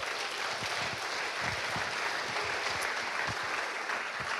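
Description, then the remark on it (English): An audience applauds steadily for child care workers, a dense wash of clapping that stays even in loudness for several seconds with no voices breaking through. “Can we give them all a big round of applause and hope they hear?”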